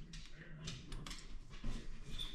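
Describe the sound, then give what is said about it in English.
A dog whimpers quietly in a couple of short, soft whines over a low background rumble. No one is speaking. “Hopefully the dogs behave.”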